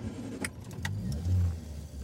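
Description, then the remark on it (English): A couple of sharp metallic clicks, then a van engine rumbles into life with a low, steady drone that swells briefly as it pulls away, in a windy storm. No one speaks. “Be careful in the storm, Pa, Mary shouted over the wind to her father as he got into his van.”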